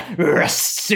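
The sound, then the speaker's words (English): A person briefly growls in imitation of a dog, a fairly loud rasping vocal sound lasting about a second, starting voiced and turning breathy and harsh. “… growled at me just now, saying we have to go to the amphitheater.”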